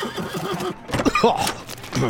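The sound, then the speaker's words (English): A horse lets out a loud, shrill whinny as a procession of official-looking carriages flying bright flags arrives through an opening gate, its wavering cry rising and falling over a couple of seconds amid faint background rustle. “We watched the gate crank open to reveal a procession of official-looking carriages flying bright flags.”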